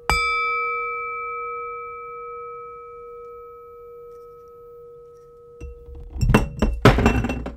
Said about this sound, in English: Damn it, I just spilt my beer.